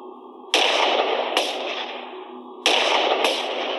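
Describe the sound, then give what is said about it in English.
Four sharp, loud gunshots ring out in two quick pairs, two shooters each firing twice at a man in a house, each crack trailing into a short echoing decay, with no talking. “When Phil walked through the door, I shot, Paul shot. We both shot twice.”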